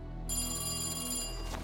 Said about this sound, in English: The Schuslers and the Petersons sat anxiously by the phone, scrambling to pick up the receiver anytime it rang.